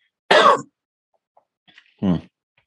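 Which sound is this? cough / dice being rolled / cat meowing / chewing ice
cough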